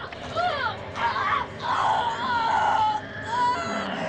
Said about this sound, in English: Tina screams for help as the man continues to attack her. Rod tears the sheet off of Tina, but the man is gone.